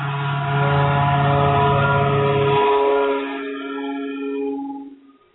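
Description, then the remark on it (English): A city mosquito spraying truck, spraying for mosquitoes, rolls by outside with a loud, steady, buzzing drone. Its low tone drops out partway through, and the higher whine lingers, then quickly fades away. No one speaks. “My city decided to go through and spray for mosquitoes right when we're doing that.”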